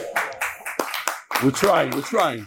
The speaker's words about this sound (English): We're trying. Get over here and clap your hands.